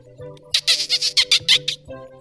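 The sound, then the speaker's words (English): Someone imitates a dolphin with a quick run of about eight shrill, squeaky chirps riding over a steady buzzing hum, ending in one more chirp after a brief pause. “Hey, and how are you about to talk about how good your dolphin noise is without giving it to us right here, right now?”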